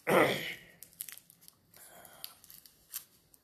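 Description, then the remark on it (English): A small plastic cough drop wrapper is torn open with a sharp rip, then crinkles in quick, light bursts. The rustling is soft and intermittent, with no talking over it. “I gotta get a cough drop.”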